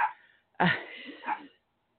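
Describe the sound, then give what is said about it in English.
A dog named Kiwi barks: a fading bark at the start, then a loud, sharp bark that trails off over about a second. No one speaks. “Okay, she's just going to bark.”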